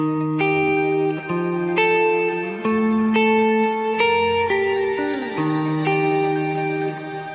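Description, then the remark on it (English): Electric guitar plays slow, sustained two-note phrases through a crystal delay effect set at 20%, each note blooming into a shimmering, echoing wash that hangs over the next. No one speaks. “And it again, it adds some shimmer to the sound.”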